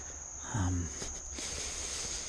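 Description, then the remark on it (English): Cicadas keep up a steady, high-pitched buzzing drone the whole time, soft, with a brief murmur of a voice early on, in the early morning when it is barely light, in late summer with rain threatening. “But the cicada are. I don't know if you can hear them.”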